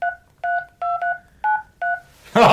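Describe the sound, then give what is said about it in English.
Six clear telephone keypad tones, dialing the last six digits of a phone number, beep one after another at a steady, slightly uneven pace, loud, followed by a brief burst of rustling noise at the end. “Wait, are those tones universal? Could I do that on my phone?”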